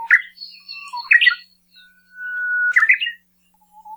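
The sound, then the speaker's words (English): An uguisu, a Japanese songbird, sings loudly with no voices present: a long, steady high whistle holds for about a second, then breaks into a quick warbled flourish, its song type with a long introductory whistle ending in a syllable. Shorter chirps and whistled phrases come before it. “they're really hard to see, but it's their loud, very distinctive song that gives them away.”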